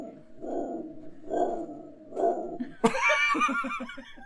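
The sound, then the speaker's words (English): A dog howls: a sudden, loud, wavering howl bursts in after a few low, rhythmic vocal sounds, its high pitch wobbling in quick pulses for over a second, prominent. “Your dog's like, what's going on? You sound like a hound hell. Or a hellhound.”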